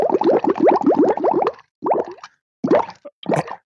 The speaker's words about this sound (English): How about this? Bubbles. Would you like some bubbles? Let's love some bubbles.